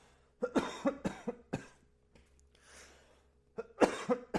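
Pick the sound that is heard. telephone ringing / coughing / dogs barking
coughing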